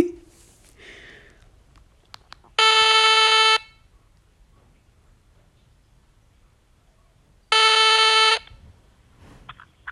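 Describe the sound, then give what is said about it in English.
Two loud, buzzy ringback tones from a telephone on an outgoing call, each lasting about a second and spaced several seconds apart, with quiet background noise between the rings. “Actually, it's not ringing. Let me play music for you. Sorry, it's ringing.”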